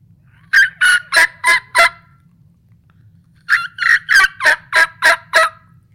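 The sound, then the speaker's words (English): A turkey mouth call imitates a hen's gathering call to her poults: a run of five sharp, evenly spaced kee-kee notes, a brief pause, then seven more kee-kee and yelp notes, loud with no talking. “But I like mixing that kiki in with a yelp.”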